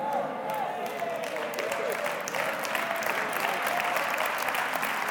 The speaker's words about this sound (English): Come on, church. You are allowed to clap your hands. Even if there's a social distance, that's the truth.